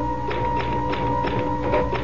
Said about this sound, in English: I found myself putting in a piece of paper, and I began pecking at the keys. Somehow, the typewriter took over.